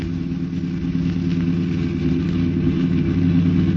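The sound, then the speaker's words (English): A car engine roars steadily as the car pulls up alongside another car to force it to the curb, a deep continuous rumble holding its pitch throughout, with no voices over it. “Well, pull up alongside and force him to the curb.”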